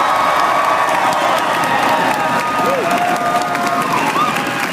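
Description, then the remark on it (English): A live studio audience on the University of Cincinnati campus claps and cheers loudly and continuously during a radio broadcast, a dense wash of applause with scattered whoops and shouts rising above it from start to finish. “Thank you so much for that applause.”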